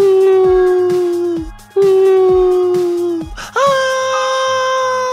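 Three long, drawn-out wailing howls, each held steady before sliding down at the end. The third rises sharply to a higher, piercing pitch, loud and alone with no talk.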